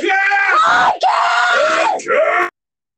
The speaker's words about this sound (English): I yelled out that it's podcast time.